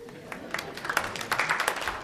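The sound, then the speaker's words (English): A thin smattering of applause as an audience gives itself a round of applause, scattered claps popping irregularly at moderate volume over a low murmur of voices, never building into a full ovation. “That was kind of a smattering round of applause, but it was okay.”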